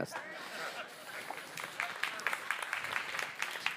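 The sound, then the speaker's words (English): An audience at a sermon breaks into applause for the preacher's birthday, a dense wash of overlapping hand claps with sharper individual claps popping out, steady and moderately loud for a few seconds. “You don't have to clap.”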